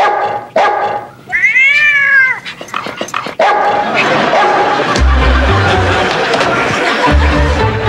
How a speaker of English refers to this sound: Look, there's the Waterman's cat. Hi, Snowball.